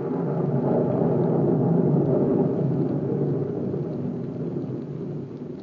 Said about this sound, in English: Not a night to do this job. I'm superstitious about the rain.